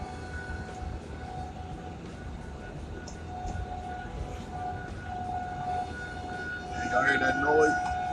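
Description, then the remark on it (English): A loud 1 o'clock siren wails outdoors, its sustained tones holding steady before swelling and bending near the end, over a constant low rumble of traffic or machinery. “Oh, that big ass siren.”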